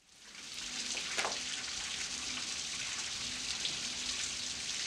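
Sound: rain falling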